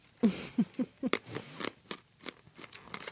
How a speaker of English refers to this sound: I just crunched my Ricola.